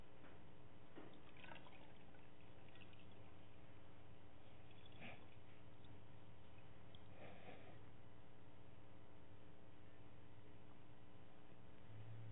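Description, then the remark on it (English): Water is poured into a basin, heard as a few faint, separate splashes and trickles spread over several seconds against a quiet, steady background with no one speaking. “But he goes and he kneels down and he takes this water.”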